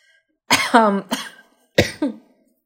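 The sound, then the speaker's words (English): A loud coughing fit from a person's chronic minor cough: a cluster of harsh, raspy coughs with a throaty tail, a brief pause, then two more sharp coughs, with no talking. “I sound like you have a cough there”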